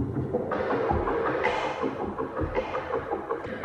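A drummer's musical rendition of the sound of the spinning Vela pulsar: a dense, loud, throbbing wash with heavy low pulses and brighter hissy swells arriving in uneven waves. No one speaks.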